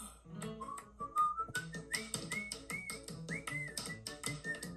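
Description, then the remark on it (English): A bright, clear whistled melody from a Steamboat Willie cartoon rises and falls in short phrases over a bouncy instrumental accompaniment with steady rhythmic hits, fairly loud, with no talking. “They're all gonna whistle along.”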